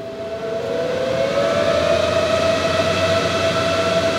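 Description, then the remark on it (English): A steady, loud mechanical hum from hydropanels pulling moisture out of the air, behind a black fence near Elkhorn Creek and U.S. Route 52 in McDowell County, West Virginia, with a droning tone that glides slightly upward then holds level over a constant whooshing, rumbling noise bed, with no talking. “But as I walk toward them, I hear a weird hum, kind of like a spaceship getting ready to take off.”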